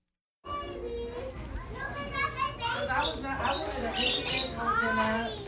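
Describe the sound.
Several young children at Little Sun People, a daycare center in Clinton Hill, Brooklyn, New York City, chatter and call out at once as they line up for violin lessons, with high-pitched overlapping voices, squeals and bursts of laughter forming a steady, busy din that never pauses.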